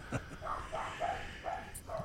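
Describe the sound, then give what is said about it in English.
A dog barks in a quick, uneven series of short, high yaps, about five in two seconds, sounding somewhat faint, with no voices over them. “I hate that dog so much.”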